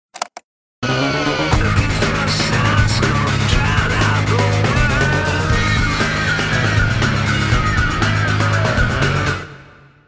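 A loud, dense burst of distorted industrial rock, with grinding, noisy guitars over a heavy pulsing low end, playing steadily for about eight seconds before cutting off abruptly.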